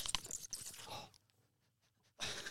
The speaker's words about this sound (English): That sounded like a bush wallaby. Cracked me first can, boys. Cheers. Wasn't a wallaby, it was a frothy.